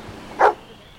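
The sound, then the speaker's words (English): A single sharp bark from a cadaver dog brought in to aid a search, short, against a quiet outdoor background with no talking. “So they brought in the cadaver dogs to aid in the search.”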